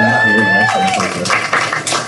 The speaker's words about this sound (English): So that was really, really cool. Yes, you can applaud for them.